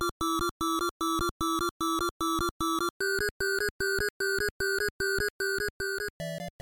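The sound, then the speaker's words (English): Urgent, relentless video game music made of rapid staccato electronic notes pulsing in a steady beat. The pitch jumps higher partway through, then shifts again right at the end. No one speaks. “Oh, this is some rough music.”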